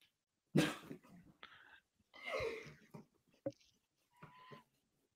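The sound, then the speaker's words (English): Someone imitates a whale spouting water from its blowhole with several loud, breathy blowing and snorting bursts, separated by short pauses. “I think …'s performance of whale. You're shooting the water.”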